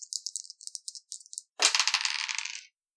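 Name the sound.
dice being rolled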